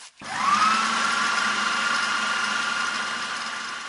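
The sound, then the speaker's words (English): A blender motor starts up with a rising whine, then settles into a steady, loud whirring drone, churning torn newspaper and water into a thick paste for several seconds without any voices. “Are you just going to put a whole handful of paper in the blender?”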